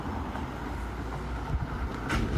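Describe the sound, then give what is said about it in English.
Two cars from different directions rumble over a new speed ramp on a road in Dublin, with a couple of dull low thuds as wheels hit the ramp, over steady traffic noise and wind. “We've got a new ramp on the road and the cars are baiting over it.”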